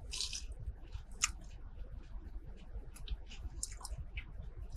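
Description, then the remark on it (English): A crunchy bite into a fried chicken nugget, followed by steady, moist chewing with occasional sharper crackles, with no talking. “There's more of a crunch than Burger King, but yet there's a more of a mushiness.”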